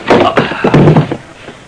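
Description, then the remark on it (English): A quick cluster of heavy, dull thuds of a man being slugged from behind as he reaches a barroom door, loud in the first second before tailing off into quiet. “I was slugged and kidnapped.”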